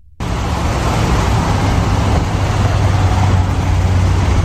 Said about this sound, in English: Pulled into my favorite 7-Eleven to get diesel for my truck here.